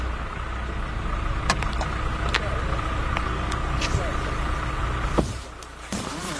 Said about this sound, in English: All right, then. Get in the car. We can talk while I drive into town.